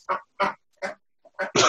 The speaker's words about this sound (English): So those are my pet ducks at the window. You're making this super serious point. Well, the ducks agree with you, right? They do.